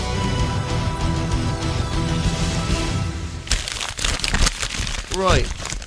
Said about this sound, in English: Right, okay, that's all the wrapping paper got out of the way.